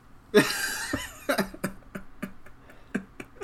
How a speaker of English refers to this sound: The All screenshot right, that's of that guy getting lifted out of the water made me laugh until I started coughing.